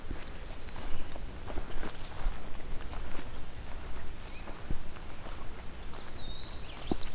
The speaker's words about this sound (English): Oh, what's this? Sounds like an annoyed common yellow throat. Yep, it's a male.